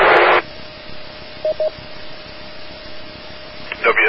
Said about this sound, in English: There was a like a female voice or a younger person's voice in the background. There was lots of static. Try it again.